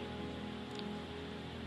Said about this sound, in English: Those of you here in Kumasi, I think you can feel the rain and the cold. Please do not slip off. Do not yield to the temptation of the weather. Can you guys hear the feedback of the rain? You can hear it. It's raining seriously via.